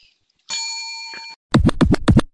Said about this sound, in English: Get the bell out.